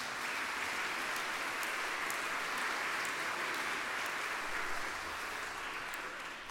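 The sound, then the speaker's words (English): An audience applauds the choir in a steady, dense wash of clapping that holds evenly for several seconds, with no voices standing out, then tapers slightly near the end. “Give that choir a round of applause.”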